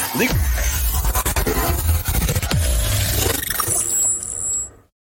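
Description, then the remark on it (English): A loud, dense bumper jingle lasting about five seconds, packed with roaring, growling sound effects and swooping tones, with no talking, before cutting off abruptly into silence. “You weren't expecting that bumper.”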